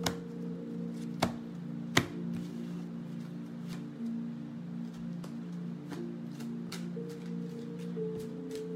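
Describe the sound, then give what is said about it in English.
Playing cards being shuffled and handled, a scattered run of sharp papery snaps and taps over a steady low hum, with no one talking. “All right, nice and shuffled.”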